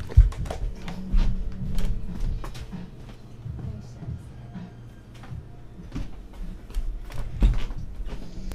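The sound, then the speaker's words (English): A door is pushed shut amid scattered clicks, rattles and shuffling handling noises, with a couple of heavier low thuds over a steady low hum. “hold on, I'm going to shut this door. It's a little loud.”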